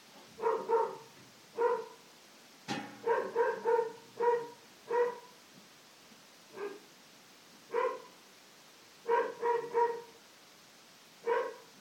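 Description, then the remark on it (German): A dog barks repeatedly in short, irregular bursts, sometimes in quick pairs or triplets, with a sharp click partway through and no one talking. “So wie das Geräusch von dem Hund jetzt, Zusammenkommen von vielen Ursachen, dass wir das Geräusch jetzt hören.”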